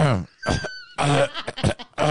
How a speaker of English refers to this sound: Just keep clearing your throat, man. Eventually, he'll just throw up.